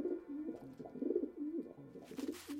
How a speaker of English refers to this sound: And then somebody just happened to be sitting in the living room with me, and I said, what was that sound? And then we said it was a wood pigeon, and now I know that it's like a wood pigeon when I hear that sound.